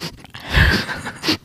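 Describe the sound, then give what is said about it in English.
A person imitates a dog sniffing right against a microphone, producing close, breathy, noisy snuffles that swell in the middle and end with one short, sharper sniff. “Does it sound like a dog sniffing the mic?”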